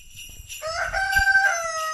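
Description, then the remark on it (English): A rooster crows, a single strained, drawn-out cock-a-doodle-doo with a bright harmonic tone, rising loud and holding before trailing off, with faint outdoor rumble underneath, at the front door of a home in County Wexford, with geese also there. “Just coming up to the front door, and there's a rooster and there's geese, and it's all very festive here.”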